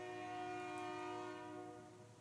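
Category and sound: vehicle, passing train horn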